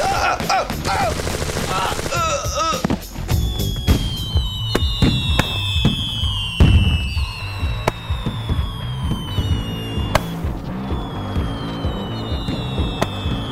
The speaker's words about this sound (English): Celebrate the 4th of July. Got my fireworks, shoot them in the sky.